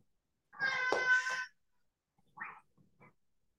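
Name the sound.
cat caterwauling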